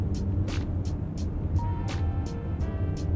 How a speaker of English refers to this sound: I went ahead and set up a makeshift studio in the car. We have a microphone.